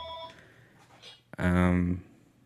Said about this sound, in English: I had to turn it back on because our phone went off.